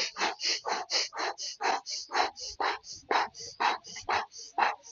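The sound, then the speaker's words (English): Rapid burst breathing, a recovery technique: short, sharp breaths alternating out through the mouth and in through the nose, about four puffs a second in a steady, loud, breathy rhythm with no talking. “So burst breathing is short out your mouth, short in your nose.”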